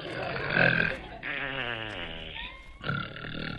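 A voice imitates snoring: a raspy, rattling snort, a long groaning exhale that slides down in pitch, then a thin rising whistle and another rough snort.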